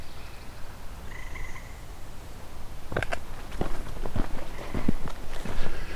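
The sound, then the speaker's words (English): A tree frog calls in a series of sharp, clicking pulses that start partway through and repeat irregularly, with faint birdsong in the outdoor background. “As you can hear, there's also tree frog here.”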